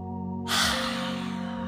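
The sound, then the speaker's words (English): A single deep, airy inhale drawn in through the nose during a guided breathing exercise, starting sharply and then sustaining softly, over a steady low droning tone in the background. “One more time, in through the nose.”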